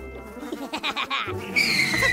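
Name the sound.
horse neighing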